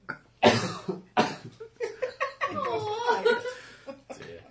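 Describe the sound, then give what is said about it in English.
A loud coughing fit from a tickly throat: two harsh, explosive coughs, then a run of hoarse, throaty splutters and gasps that gradually trail off. “Oh, I keep doing this. Coughing, sneezing. It's the most tickly throat I've ever had.”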